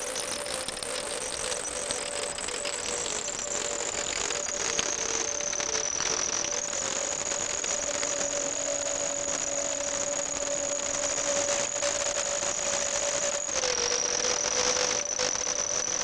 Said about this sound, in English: Noise of the mine pumps makes up the background.